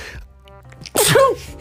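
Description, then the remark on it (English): A single loud sneeze, attributed to allergy season, bursts out abruptly after a brief quiet moment, with a sharp breathy explosion and a short voiced tail. “Fuck, I just sneezed.”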